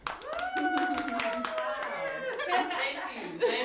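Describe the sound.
A crowd applauds to welcome an expert guest, a three-time RA, with a steady rush of rapid, overlapping claps, while high-pitched cheers and whooping voices rise over it for the whole few seconds.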